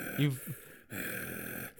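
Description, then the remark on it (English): Heavy breathing from someone as Batman at a dinner table, breathing on another person: a short voiced gasp, then long, loud, hissing breaths in and out right next to the listener, with no words spoken. “Can you please stop breathing on me?”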